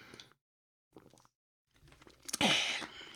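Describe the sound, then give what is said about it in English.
A few quiet sips of water and small slurping sounds with brief pauses, followed by a louder, breathy exhale that fades out at the end. “It's a bit late in the day for that, but I'll have another sip.”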